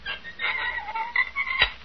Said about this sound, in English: Well, now, how does this vault of yours work? In 30 seconds, I open the door. You mean to say there's no ringing of bells? No fanfare of trumpets? No. I just open the door. Like this.